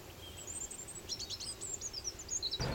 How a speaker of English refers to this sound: Before sunrise, a lone bird begins his solo with a warbling call. Other birds respond, together creating the dawn chorus as they sing to defend their territory and call for mates.